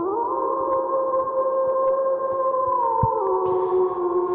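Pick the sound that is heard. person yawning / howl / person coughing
howl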